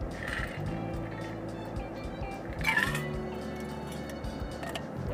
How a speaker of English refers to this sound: Can't wait until this car cools off a little bit more. Got the air conditioner blowing. You can probably hear it.